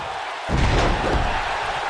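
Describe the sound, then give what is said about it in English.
A heavy body slams onto a wrestling mat from a tiger suplex with a deep thud at about half a second, followed by a roaring crowd that stays loud and steady. “Tiger suplex goes for the pin.”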